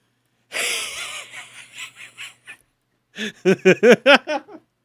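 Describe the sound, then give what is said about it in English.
A person imitates a dog, first with a raspy, wheezing pant in uneven pulses, then a quick run of about seven loud, voiced yips and barks. “You want to hear my impression of that dog?”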